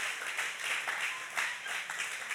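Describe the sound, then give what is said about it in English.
An audience applauds to welcome first-time visitors, a steady, dense wash of many hands clapping at once with small swells in loudness, continuing evenly throughout with no voices on top. “Round of applause.”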